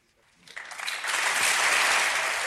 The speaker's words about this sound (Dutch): Dat is nou een applaus. Dat is echt een applaus. Ja, dat is een stuk indrukwekkender applaus. Waar wordt er voor geklapt?